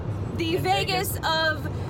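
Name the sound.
car interior ambience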